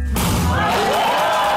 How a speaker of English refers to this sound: A groom breaking the glass at the end of a ceremony seals their marriage to their bride on the count of three. One, two, three.